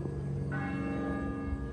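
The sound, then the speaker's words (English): Church bells ring out in a dense, sustained wash of overlapping metallic tones, with a fresh strike adding a bright ringing layer partway through. No voices are heard. “The church bells began to ring.”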